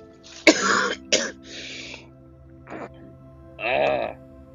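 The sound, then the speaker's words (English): A person who has been sick with a cough coughs a couple of times in sharp bursts, followed by raspy throat clearing and a final hoarse cough, with brief pauses between. “Still got the cough.”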